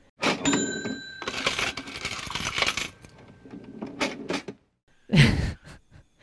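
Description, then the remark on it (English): A cash register rings with a bright ching as the drawer rattles open, coins jangling for a few seconds before a final solid clunk. Loud, with no talking. “Can we build a soundbite that we play before we pay the Wolftooth tax? Like a cash register, like chinging open?”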